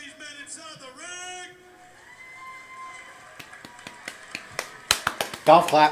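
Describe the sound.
A quiet golf clap: a few soft, widely spaced hand claps that grow quicker and a bit louder, following a stretch of drawn-out voices or whooping.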